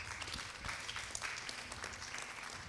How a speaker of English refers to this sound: The way you are clapping, it sounds like you don't know.